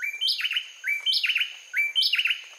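A pair of bay wrens sings a brisk, ringing duet just before sunrise on a winter morning in Costa Rica, repeating the same rapid phrase three times in quick succession, loud with no other sounds.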